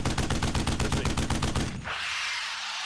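A rapid, steady burst of machine gun fire, loud, rattling for nearly two seconds before cutting off into a lingering hiss of noise.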